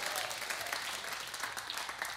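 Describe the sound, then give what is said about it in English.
An audience gives God a hand clap as they are seated, many hands clapping at once in a dense, steady, crackling wash of sound with no pauses, loud and even from start to finish. “Give God a big hand clap as you're seated.”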